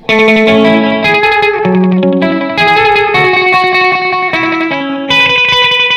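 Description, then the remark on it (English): Loud, distorted electric guitar notes played through an Echo System delay pedal, each phrase repeating exactly five times in delayed copies that blur together and then stop, with no talking. “Can we just hear the Echo system alone?”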